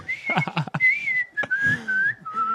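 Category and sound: human body sound, person whistling a tune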